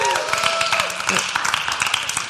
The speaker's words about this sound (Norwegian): Så jeg tenkte vi skulle starte opp med å få Caroline på scenen. Så kan vi gi Caroline en skikkelig applaus.